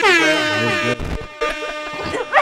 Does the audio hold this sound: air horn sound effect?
yes